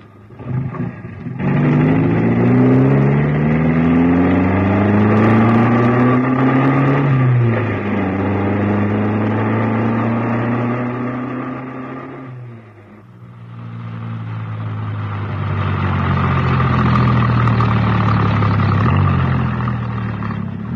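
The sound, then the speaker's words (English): A car engine is started with the ignition key, turns over and catches, then revs loudly as the car pulls away, its droning pitch climbing steadily before dropping with gear changes and rising again. No one speaks. “Hold on. I'll just get the ignition key.”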